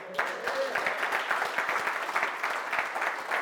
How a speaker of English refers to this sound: Clap for her.